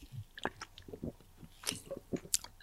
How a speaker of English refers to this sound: Like, I don't care. Starburst Lemon has avocado in it. The things I learned. I'm taking more sips of this.